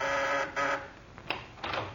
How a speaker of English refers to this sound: The doorbell rings.